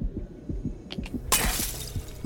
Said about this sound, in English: You have dropped your glass. Deploying cleaning task.